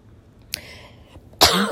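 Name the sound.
coughing and throat clearing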